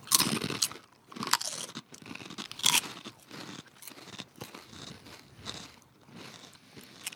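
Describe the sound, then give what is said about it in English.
Crisp crunching of a plain Crunch Tater potato chip being bitten and chewed, with sharp bursts of crackle early on settling into steadier, softer chewing over several seconds, no talking. “That's a good chip.”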